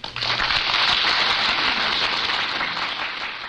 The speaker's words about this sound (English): That applause was for you, Lisa.